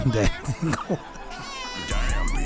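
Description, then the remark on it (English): Someone voices a cat, with a few short, strained yowling bursts followed by a drawn-out breathy hiss near the end, fairly loud. “All right, once you hissed at me, I was done, bro.”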